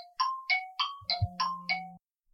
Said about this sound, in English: Sorry about that. An alarm sitting on it that just started going off here on my phone.